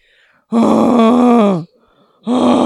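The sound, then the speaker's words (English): A person imitates a dying cow with a loud, long, low droning groan lasting about a second. After a brief pause, a second groan starts just as strongly. “And all I heard was what sounded like a dying fucking cow.”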